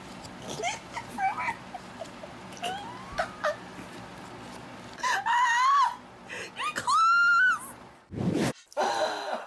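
A cat reacting to catnip makes excited chirps and short trills, then two loud, drawn-out wavering yowls, followed by a sharp breathy hiss-like burst, with no talking.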